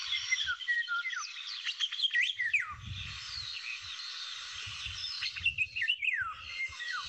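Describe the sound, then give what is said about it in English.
Two birds sing melodious, warbling phrases that overlap and answer each other, rich and fluting over a steady insect-like hiss, with soft low rumbles underneath and no talking. “There's two birds singing there.”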